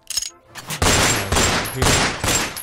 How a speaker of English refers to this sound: Like those type of gunshots? Followed by a boom.